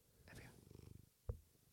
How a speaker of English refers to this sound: She's purring a little bit. It's not like a full purr.